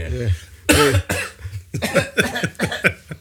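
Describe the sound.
Several people cough loudly in quick succession, a cluster of sharp bursts with some throat-clearing mixed in and faint voices between them.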